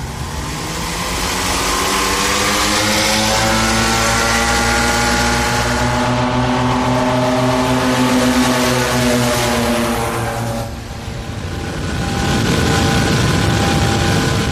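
airplane engine

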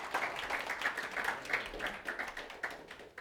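round of applause

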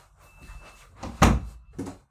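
door being shut

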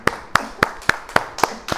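audience clapping

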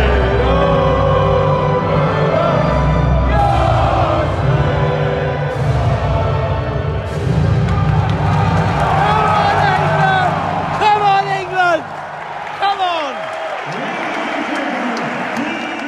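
stadium crowd roaring

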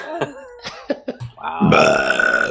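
burp

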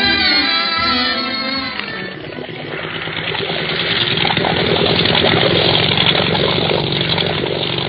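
motor launch engine running

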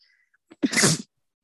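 sneeze

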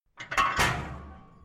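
door slamming shut

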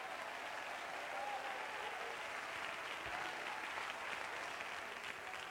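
audience clapping hands

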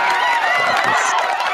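applause

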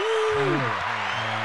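applause sound effect

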